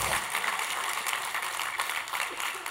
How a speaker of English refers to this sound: Yeah, that's a good place to clap right there. Come on.